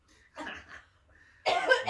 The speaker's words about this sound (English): … is coughing again